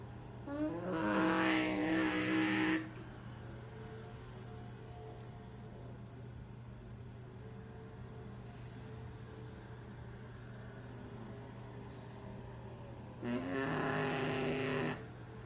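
Loud, revving sprint car engines roar past twice on a race track during a sprint car series race, once at the start and again near the end, with a lower, steady engine drone and hum filling the gap between passes.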